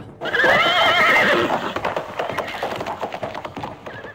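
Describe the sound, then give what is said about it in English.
A horse lets out a loud, wavering whinny, then hooves take over in a quick, steady clip-clop rhythm as a rider sets off on it. “Get on my horse. Hya!”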